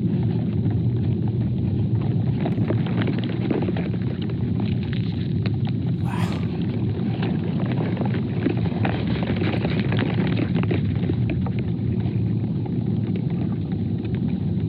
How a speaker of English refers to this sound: People have put microphones into the ground to hear what this thing sounds like. This is like its roots basically moving water around and gathering nutrients. Have a listen to this.